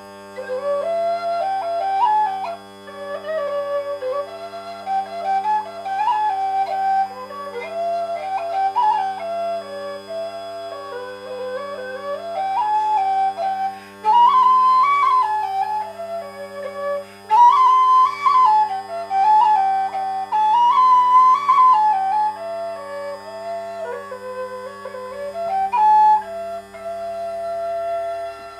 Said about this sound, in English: I played the melody first on a B-flat generation whistle, and then at the end there I played the melody again, but this time on my new low G whistle from Killarney Whistles, the Thunderbird.